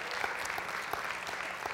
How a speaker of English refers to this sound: I'm looking at a brand new baby in our congregation today, and let's give God a hand clap of praise for this baby girl.